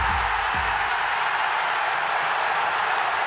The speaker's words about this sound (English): A crowd of Gunners euphoria! Arsenal 3, Tottenham 1.